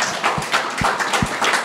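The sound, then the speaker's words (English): A short burst of steady clapping from a small live audience welcoming NRL players Bradman Bess and Phoenix Crossland, a dense crackle of overlapping claps with a few heavier thumps, lasting under two seconds. No voices are heard. “Round of applause.”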